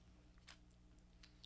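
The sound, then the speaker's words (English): Crunchy chewing by several people, with sharp bites and crackles over a steady low hum, as stale dry cereal is munched in irregular bursts. “Damn, look how stale these cereals are. Everyone's still chewing.”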